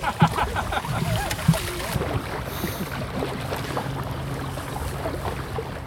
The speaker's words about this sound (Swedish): Fantastisk känsla att bara glida fram här genom, ut på Grenefjärden nu ikväll. Det blåser inte mycket, men tillräckligt för att vi gör några knop framåt och ja, ni hör själva.